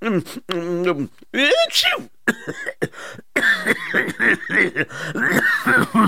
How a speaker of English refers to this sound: Sir, do you need a doctor right now? No, why? You're coughing, sir. No, just a little dust got stuck in my throat.